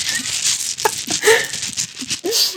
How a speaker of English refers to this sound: All right, we got dice it. Dice sound effect. Yeah, I add that in later. We don't do that live every time.